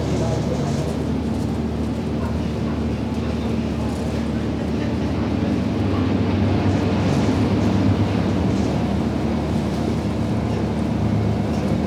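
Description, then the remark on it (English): A passenger boat's engine drones steadily with a low throbbing hum, water wash and wind noise, while indistinct voices murmur underneath, as the boat arrives at the pier of Bowness. “we will shortly be arriving at the pier of Bowness, where this boat will form the 335 sailing to Appleside.”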